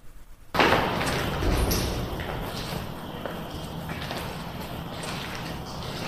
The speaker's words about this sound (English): Here's a door slamming.